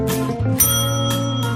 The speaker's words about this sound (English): Ah, yes, and here we are with the first book. We rang that bell for you, Eric